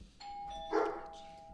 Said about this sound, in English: Lord, it's COVID. Don't ring my bell. Get out of here.